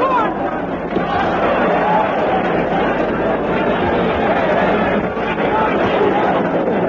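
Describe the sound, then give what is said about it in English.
A dense, steady roar of an English crowd at a boxing match, many voices shouting for the underdog and chattering at once without pause, loud and continuous throughout. “Crazy crowd, the English. Always shout for the underdogs.”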